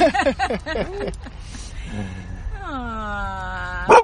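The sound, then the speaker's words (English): A female Golden Retriever Husky mix dog lets out a quick run of sharp yips and short barks, then falls quiet before a long, drawn-out whining cry, over faint background noise. “Oh my goodness, that was random, running into a dog that's wanted to talk on the podcast show.”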